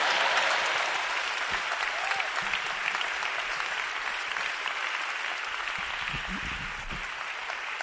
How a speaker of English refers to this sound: Clap for the young boy.